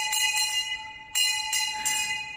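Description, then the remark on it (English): A primary school bell rings continuously with a steady, bright metallic tone and brief surges of clatter, fairly loud, with no voices present. “And if you were really good, you got to ring the bell.”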